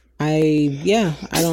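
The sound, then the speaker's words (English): A single sneeze: a drawn-out voiced intake that rises in pitch, then a sharp, hissy burst at the end. Nothing else is heard. “Bless you. Thank you.”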